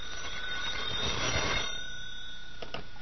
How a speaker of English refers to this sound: Oh, telephone. See, something's happening already. I'll answer, Ma.